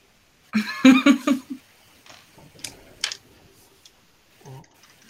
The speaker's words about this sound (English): So the wands is 2, the cups is 1, so roll 3d6. Ugh. 2 dice, I still managed to drop a die somewhere.